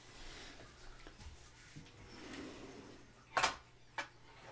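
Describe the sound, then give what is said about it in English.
A door being opened to let out Seamus, a pet: a sharp latch clack followed a moment later by a lighter knock, otherwise quiet. “I'm gonna let him out before he breaks my doors.”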